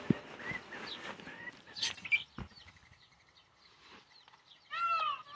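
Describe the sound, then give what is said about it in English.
Many chicks cheep while eating alongside roosters and desert doves, a steady, overlapping chorus of short high chirps, with occasional soft pecking clicks and a louder burst of calls near the end. “If you're enjoying the ASMR in the background, the sound of real live roosters and chicks, lots of chicks eating, chicks hanging out with the desert pigeons, desert doves.”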